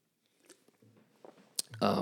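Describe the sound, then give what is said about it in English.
Mouth sounds of someone sipping beer: soft wet clicks and a sharp slurp, then a louder gulp and breathy exhale at the end, with no talking. “Take a sip of my beer here.”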